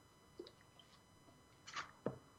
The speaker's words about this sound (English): Just taking a squirt of water here.